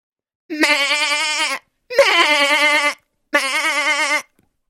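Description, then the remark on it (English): A person imitates a goat, letting out three long, wavering bleats in a row with short pauses between them, loud, with a quavering vibrato throughout. “My sister has goats, so I've heard goats and he's experienced.”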